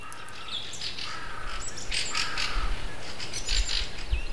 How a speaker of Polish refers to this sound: I dopiero śpiewy drozdów obudziły go nad rankiem.